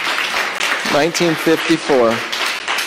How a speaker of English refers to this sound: Go ahead and give them a round of applause here.